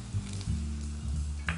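Beef stock is poured into a hot pan for the first pour, hitting it with a steady, crackling sizzle and a low bubbling rumble underneath, broken by a few brief hissing bursts. No one speaks.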